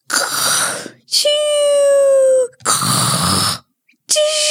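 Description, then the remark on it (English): A person imitates snoring into a microphone, alternating loud rasping snorts with high, whistling voiced breaths in a steady back-and-forth rhythm, with short pauses between. “That's really good fake snoring.”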